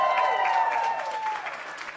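An audience breaks into applause for a man cast to play the part of Abram, a dense, steady wash of many hands clapping that holds for about two seconds with a thin high tone riding over it early on.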